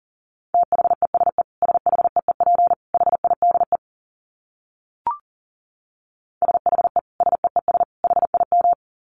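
Fast Morse code at 40 words per minute: a steady mid-pitched tone keyed into rapid dits and dahs, sent in two bursts of several seconds each with a short click and silence between.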